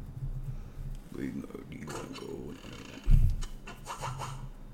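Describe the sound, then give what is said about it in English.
A barrage of arrows rains down on a boat, a dense rush of whooshing and scratchy, clattering impacts over a low rumble, with one heavier thud partway through. “Barrage of arrows comes raining down on your boat.”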